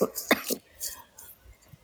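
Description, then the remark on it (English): A few short, breathy coughs in quick succession, fairly quiet, followed by soft throat noise and a brief pause before another sharp burst at the end. “I never get sick, but I'm just insanely coughing lately.”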